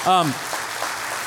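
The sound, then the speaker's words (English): An audience breaks into steady, diffuse applause following a brief vocal exclamation at the very start, with the clapping continuing at a moderate level throughout. “And so when I mention that, yeah, you can definitely applaud.”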